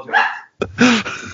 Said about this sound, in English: let me put these dogs that are attacking me away. They attack dogs.